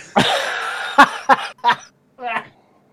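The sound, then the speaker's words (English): A loud coughing fit: one long raspy hack followed by three short, sharp coughs in quick succession, then a strained voiced gasp as it trails off. “You're just trying to make me laugh on purpose because I'll start coughing.”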